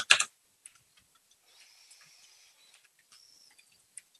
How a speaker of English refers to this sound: I'm typing that in.